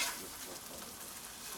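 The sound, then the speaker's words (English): Eggs fry over easy in a frying pan with a steady, hissing crackle that runs unbroken throughout, fairly soft, with no one talking. “Yeah, I think these are over easy done perfectly.”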